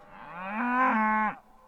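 A single drawn-out moo from a dairy cow, steady, swelling slightly before dropping off abruptly at the end, with no voices around it.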